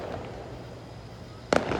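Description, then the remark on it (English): A steady low rumble of crowd noise at a fireworks display in downtown Baton Rouge gives way to a sudden sharp firework burst near the end, followed by crackling echoes. “So this is me with the fireworks. I have stumbled on a fireworks.”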